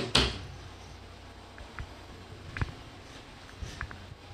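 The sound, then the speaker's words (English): A door shuts with a single sharp thud right at the start, followed by a few faint, scattered clicks and knocks. “Alright, I'm just gonna close this, sorry.”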